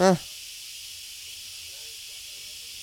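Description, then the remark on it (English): A steady, bright hiss of steam escaping from an Instant Pot runs continuously from start to finish, preceded by a brief voiced exclamation right at the beginning. “That's going to be loud. That's so much steam.”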